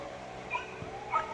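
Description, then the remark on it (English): A neighbor's dog, set off by someone leaf blowing, gives a few short, high-pitched barks or yips, spaced out and fairly faint, with no one talking. “So what dog is that right now barking?”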